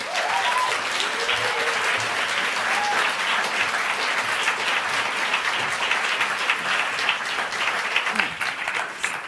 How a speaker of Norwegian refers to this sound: Så gi dem alle tre en varm applaus.